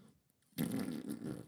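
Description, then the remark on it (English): A voice makes a loud, buzzy mouth imitation of a fart from a woman waiting behind someone at a shop counter, one sustained blat of about a second that starts abruptly after a brief quiet and wavers slightly before ending. “I don't know if she ran out because she farted.”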